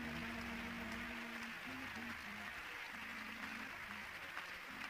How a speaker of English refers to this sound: I think maybe you misunderstood me. That might would have been good for the mayor of the city, but I said, let's give the Lord a hand clap of praise. Hallelujah, hallelujah.